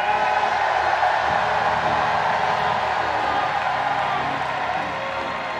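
audience shouting

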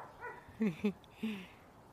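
dog barking and whimpering

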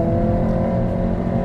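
car engine revving

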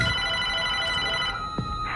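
landline house phone ringing

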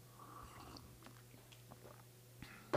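sipping coffee

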